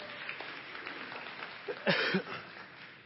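An audience claps in a steady, crackling wash of applause after the announcement of a brand new office building. The applause continues throughout, with a brief voice rising over it partway through.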